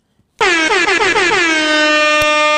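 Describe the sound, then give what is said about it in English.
A loud, sustained air horn blast kicks in abruptly, its harmonic tone wavering in a few rapid pulses before holding steady for about two seconds, with no one speaking. “Let me even get an air horn for the people joining us.”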